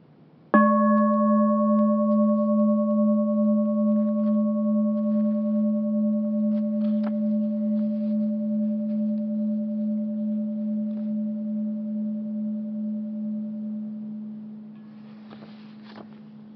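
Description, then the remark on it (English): A meditation bell is struck once, and its deep, low tone with a slow wavering pulse rings out steadily for about fourteen seconds before fading away. No voices are heard. “I'm going to take just a moment and give you a bell here.”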